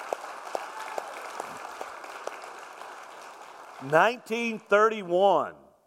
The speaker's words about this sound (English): Hey, I think that warrants a hand clap right there.